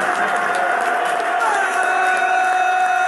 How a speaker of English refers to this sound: Bradford crowd screaming for him to get off quickly.